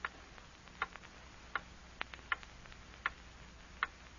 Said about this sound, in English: Hear that clock?